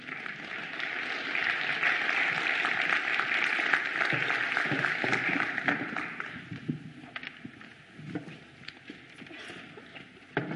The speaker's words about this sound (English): So give them a round of applause as they come.